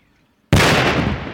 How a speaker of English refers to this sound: They blow up the cluster bomblet on the spot and then move the heavier bombs to a different location for a massive controlled explosion.